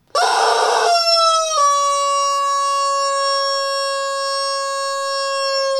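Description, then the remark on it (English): The world's largest rubber chicken, rolled all the way up, lets out one loud, long squawk, starting with a raspy, breathy burst and stretching into a shrill, steady wail that holds for several seconds. No one speaks. “Behold, the world's largest rubber chicken. Hear him roar.”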